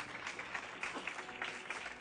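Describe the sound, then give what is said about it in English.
A church audience applauds the married couples standing among them, a steady, dense patter of many hands clapping at once that keeps an even level throughout, with no voices rising above it. “Pwede pa nating palakpakan sila?”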